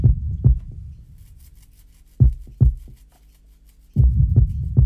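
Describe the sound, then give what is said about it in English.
Deep, booming kick drum hits land in quick pairs, each leaving a washy reverb tail that hangs in the low end between beats. No voices, just the drum pattern. “But if you can control the reverb, it's actually a very effective technique in kicks.”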